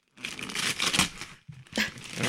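Wrapping paper crinkles and rips as a gift is unwrapped, a dense, bright rustle that keeps going, breaks off briefly, then returns in a sharper burst. No one speaks.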